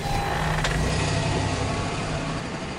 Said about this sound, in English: I guess you should start the car and we should drive off.